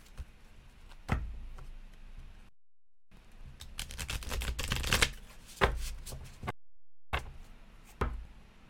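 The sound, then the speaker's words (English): Tarot cards being shuffled for a reading, with a flurry of crisp riffling bursts and sharp snaps separated by brief silent pauses. No one speaks. “Let's see what the clarifying cards reveal. Shuffle them again.”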